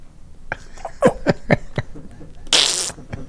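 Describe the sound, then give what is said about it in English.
A voice imitates a fart: a quick series of sputtering, popping bursts, followed by a short airy hiss, fairly loud with no speech. “He goes, farted on command.”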